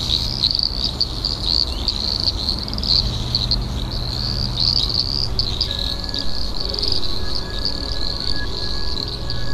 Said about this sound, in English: if you live in Melbourne and you hear this sound, please do record with the Frog ID app